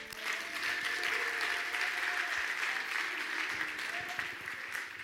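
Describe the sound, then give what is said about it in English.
A crowd breaks into sustained applause after a prayer, giving a Lord hand clap: dense overlapping hand claps forming a steady bright wash for about five seconds, with a few faint voices calling out beneath it. “I want to get a Lord hand clap.”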